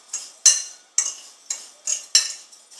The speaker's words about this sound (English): A little less than half a cup of panko crumbs. Doing some sea salt, same way. About 2 or 3 shakes. Now I'm going to stir up this mixture.